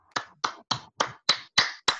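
A brief, small round of applause: about seven sharp, evenly spaced claps in a steady rhythm, fairly loud and crisp, with no voices.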